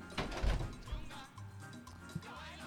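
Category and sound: household object, studio door being opened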